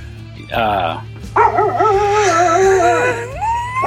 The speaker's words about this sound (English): Yeah, I think there's like a rabbit in my yard that my dog is chasing. Yeah, it doesn't sound like a rabbit. You mean the barking?